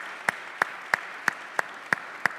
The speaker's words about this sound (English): Now, let's clap for these wonderful people. Stay standing. Stay standing.